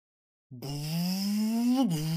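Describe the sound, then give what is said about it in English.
After a short silence, a voice imitates a spoiler alert alarm with one long, loud, buzzy drone. Its pitch creeps slowly upward, then dips abruptly near the end before settling into a steady tone. “give us your best spoiler alert alarm.”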